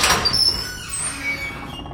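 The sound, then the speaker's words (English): A door creaks open slowly, its hinges letting out a drawn-out, wavering squeal that fades over about two seconds. The sound is fairly loud, with no voices. “I took a deep breath, readied my flashlight, and opened the door.”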